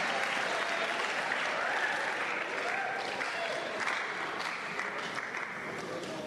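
An audience applauds the people sitting at the back in a steady, dense wash of clapping that holds at an even loudness for several seconds, with no voices standing out.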